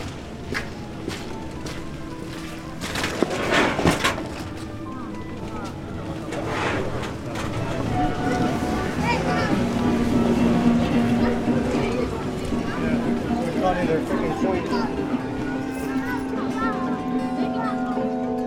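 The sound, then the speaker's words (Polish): Busy pedestrian street ambience on Krupówki: a steady wash of crowd chatter and footsteps, with scattered sharp knocks and clatters. The bustle swells noticeably louder partway through and stays dense to the end. “Wracamy na Krupówki. Tak, wracamy. Coraz głośniej się robi.”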